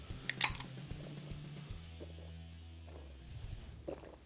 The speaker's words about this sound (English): Four gulps this time. Wow. He's out of practice.